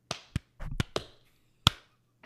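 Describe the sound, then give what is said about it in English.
Hosts do their claps to kick off a recording: a handful of sharp hand claps land in an uneven, ragged rhythm, some doubled and slightly out of sync, with short pauses between them and a final louder clap. “We got to do the claps.”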